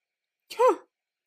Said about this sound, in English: That cough was just me. Although I did swallow saliva there when I gasped.